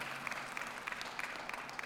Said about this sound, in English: He will hate it, but you can clap for him.